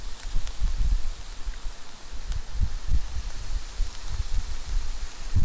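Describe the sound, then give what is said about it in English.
Hailstones patter steadily outdoors in the middle of a forest, with scattered sharp ticks over a low, gusty wind rumble. The sound is continuous and fairly soft, with no voices. “Landscape standing in the hail outside. But as I said, look at bar the hailstones, listen to that quietness.”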